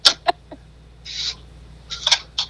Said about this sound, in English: Sorry, the cat was making a bunch of noise again. It wasn't even at the door. Yeah, I heard him going, meow, meow.